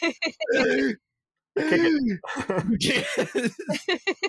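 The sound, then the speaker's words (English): A voice imitates a fish flopping on the ground gasping for air, making strained, groaning gulps and breathy sputters in uneven bursts, with a brief pause between the first gasp and a rapid, choppy string of wheezing sounds. “And he throws out a fucking little ball and out pops like a fish. It's just flopping on the ground, like really just gasping for air.”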